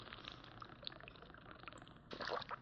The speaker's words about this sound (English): I'm going to drink some water and pause and give you as much chance as possible to say, I didn't understand what you just said.